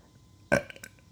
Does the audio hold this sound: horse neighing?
no